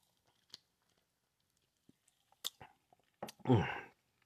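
Someone sips from a can of Cola Zero: a few soft clicks and small slurping swallows, quiet, ending in a louder breathy gulp and exhale.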